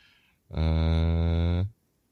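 A single loud, sustained cow moo lasting about a second, steady, with a rich droning tone that cuts off abruptly, followed by near silence.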